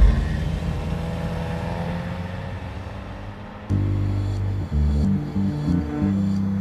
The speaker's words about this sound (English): And I just started my car and drove away.